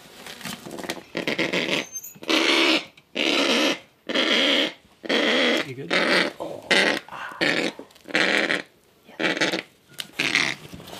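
A sick, grumpy female kākāpō named Roha growls while being handled by rangers after defending her nest, in a long series of harsh, raspy bursts, about a dozen loud grumbling pulses broken by short pauses, with no voices over them.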